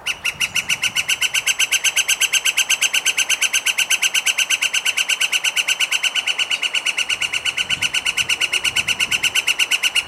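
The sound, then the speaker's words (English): A flicker woodpecker gives a long, sustained laughing call, a rapid even series of loud, ringing notes repeated steadily for several seconds without a break. “The flicker's call is described as a sustained laugh.”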